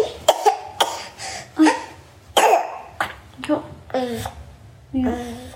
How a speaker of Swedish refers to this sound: Vi är mycket tacksamma för att vår son kan hosta.